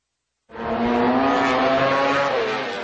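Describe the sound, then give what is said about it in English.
After a brief silence, a road-racing motorcycle engine bursts in loud, its high-pitched whine holding steady then dipping slightly in pitch as it screams on without any voices. “240 horsepower, 200 miles per hour, two wheels with no roll cage. This is the world of motorcycle road racing, the pinnacle of motorsport.”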